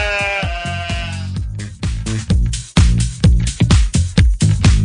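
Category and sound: animal, sheep bleating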